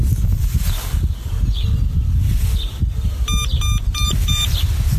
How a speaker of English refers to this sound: Glasses are powered on. You heard four beeps, meaning they're fully charged and ready to go.